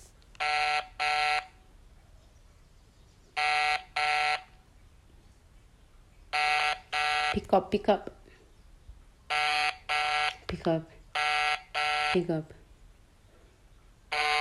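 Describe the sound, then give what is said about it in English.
A phone ringback tone on an outgoing call placed by the BTS Shout Out Show repeats in steady double bursts, each pair a bright, even-pitched buzz followed by a pause, while voices talk briefly between rings. “It's ringing.”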